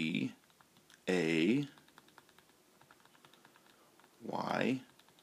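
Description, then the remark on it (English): Quick, light taps on a computer keyboard click steadily through a quiet stretch while playing the game Where in the World Is Carmen Sandiego, framed by louder bursts of voice at the start, around the first second, and near the end. “I've got a detective keyboard here. Please identify yourself, okay?”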